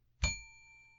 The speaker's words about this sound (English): To help me control my rowdy panel of recidivists and reprobates, I will employ what I have called the inappropriate bell. An example of this would be...